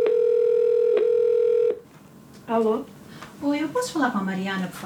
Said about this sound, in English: At the Community Health Center in downtown Lowell, two staff members make a phone call, one of dozens that day.